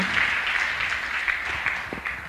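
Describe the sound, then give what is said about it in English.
Steady applause from a church audience at Miracle Christian Fellowship, welcoming a woman visitor who is a general manager of MTN, a dense wash of many hands clapping at an even, fairly loud level throughout, with no voices standing out. “Let's clap for her.”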